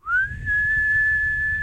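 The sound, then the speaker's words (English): A person whistles, imitating the high-pitched natural whistle the wind makes through a gap somewhere when it reaches a particular speed: one loud tone that slides upward, then holds steady for over a second over a low, rumbling background. “there's a natural whistle, and I've no idea where it is, but it's really annoying because it's really high pitched.”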